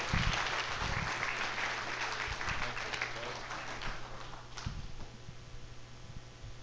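An audience in a church applauds before a testimony, in a dense, steady round of clapping that stays loud for several seconds, then thins out and tapers off toward the end.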